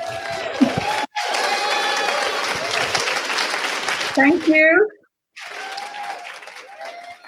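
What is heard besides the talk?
audience applause and cheering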